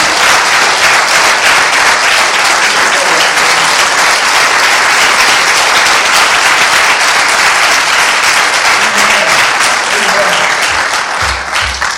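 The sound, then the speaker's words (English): Sustained applause from a crowd, a dense, steady wash of many hands clapping at an even loudness for the whole stretch, with a faint murmur of voices beneath it. “Give another clap.”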